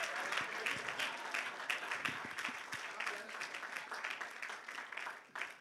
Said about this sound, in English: Me and my wife just celebrated 39 years. Please give me a hand clap. Give me.